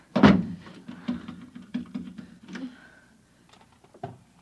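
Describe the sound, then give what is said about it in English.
A heavy wooden thud, followed by a run of lighter knocks and scraping clatter as a chair is shoved under a doorknob, ending with one more sharp bump. “Shoving a chair under the doorknob.”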